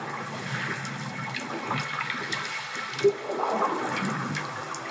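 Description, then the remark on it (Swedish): Steady underwater sea ambience, a continuous rush and churn of moving water with soft bubbling textures and one brief pop midway, even in loudness, with no voices. “Ja, jag tänker även att jag ligger lite liksom under ytan här i havet.”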